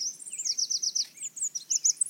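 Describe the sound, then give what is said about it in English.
Red warbler song on a clear, sunny morning: a rapid, continuous series of high, thin trilling chirps and warbles, fairly loud, with no voices and only a faint background hush. “So this is what a clear morning sounds like.”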